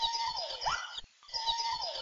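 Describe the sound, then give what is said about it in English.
An alala, the Hawaiian crow, gives its territorial call: two loud, drawn-out cries with a harsh, bleating quality and a wavering, rising-then-falling pitch, separated by a short pause. “Some territorial calls that were once common in wild birds are no longer heard in captive ones, like this.”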